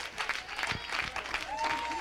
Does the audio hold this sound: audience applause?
yes